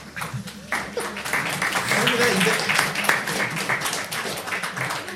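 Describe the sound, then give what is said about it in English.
A golf clap: a few people applauding politely with steady, soft, overlapping claps for several seconds, while indistinct voices murmur underneath. “Golf clap.”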